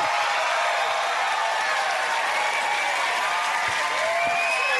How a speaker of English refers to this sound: Did you guys hear that? That was me clapping in the background.